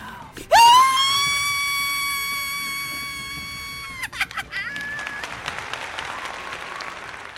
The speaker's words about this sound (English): Cat Scream from The Night House, episode 180, The Night House, The Tale of Rebethica at Dawnsk.